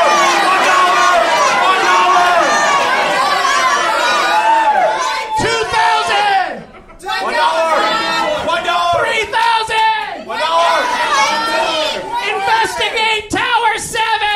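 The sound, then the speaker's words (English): An audience pretending to be The Price Is Right audience yells out prices for a sign, shouting over one another in a loud, continuous jumble of overlapping voices calling out numbers, with one brief lull before the yelling surges back. “I want you to pretend like you're the Price is Right audience and just start yelling prices out like you would on the show, all right?”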